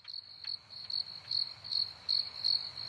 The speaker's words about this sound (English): Alas, nothing. Crickets, as we say.